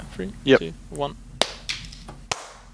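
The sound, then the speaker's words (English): Brief murmured voices fade, then a smaller knock sounds before a single sharp, loud hand clap, made to sync a recording, cracks out, followed by sudden quiet. “I'm going to clap, and we'll be right back in.”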